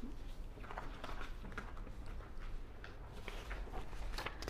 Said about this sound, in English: Now, let's take the piece of paper.